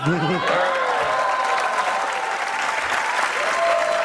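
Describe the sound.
Steady audience applause as Lieutenant Commander Dan Crenshaw comes on the set, a dense, even wash of clapping at a fairly loud level, with a brief voice heard faintly at the start.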